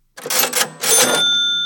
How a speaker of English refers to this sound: A cash register is where a store keeps money.